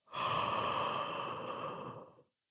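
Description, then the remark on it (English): A big, drawn-out pretend yawn lasting about two seconds, breathy and voiced with a steady hum, fairly loud before trailing off into silence. “Oh, that was a really good yawn too.”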